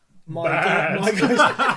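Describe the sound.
A person imitates a sheep, letting out a long, wavering bleat that warbles for over a second, with a brief breathy lead-in before it.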